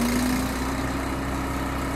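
The engine of a trailer-mounted grinder runs steadily at the Borderlands Restoration Network, as roasted pods are fed into a metal cone and ground up; a loud, unbroken low idling rumble and constant hum with a faint tonal whine running through it and no voices.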